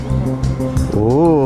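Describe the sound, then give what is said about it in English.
A voice mimics a car door thudding shut, then makes a rising, buzzing hum like an engine starting and revving. Loud, with no real vehicle audible. “Gets in the car. Closes the door. Starts the engine.”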